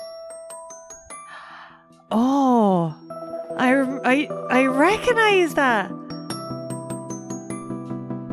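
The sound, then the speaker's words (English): A bright, jingly electronic BlackBerry phone ringtone plays a tinkling melodic tune, fairly loud and steady, with a person briefly speaking over it partway through. “What phone is it from? I don't know. Is it a BlackBerry?”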